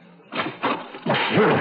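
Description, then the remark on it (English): Two quick heavy thuds as a door that had just cracked open is slammed back on a man with full force, knocking him halfway across the room, followed by a longer noisy crash with a groaning, voice-like tone running through it. “As soon as I saw the door crack open, I slammed it back on him with all my might and knocked him halfway across the room.”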